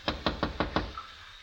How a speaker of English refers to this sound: My cab pulled to a stop in front of his place late in the afternoon. I ran up the walk, rapped on the door.